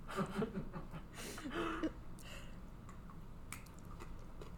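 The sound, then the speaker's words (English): Wet chewing of sticky hard candy that sticks to the teeth, with tacky smacks and clicks, following a short burst of laughter at the start. “It's really sticky and really hard.”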